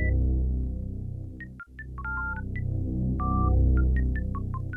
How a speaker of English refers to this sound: The mainline harmony sounds like the sound of a touch-tone phone. I'm not sure if there's any significance to this, I just thought it was interesting.